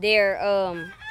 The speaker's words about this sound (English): Those chickens right there are the ones that have the males of the group. And the other chickens are all female.